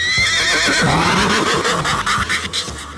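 A horse whinnies loudly, one long shrill neigh that wavers and slides downward before trailing off into snorting breaths.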